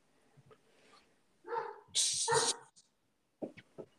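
A dog named Tiller barks excitedly at someone who came to the door, in a quick burst of loud, sharp barks, with a few softer yips and whimpers before and after, with no one talking.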